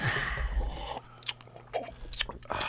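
Wet mouth sounds of someone sipping wine: a brief rushing sip followed by several sharp lip smacks and clicks, irregularly spaced, with a faint low hum behind them.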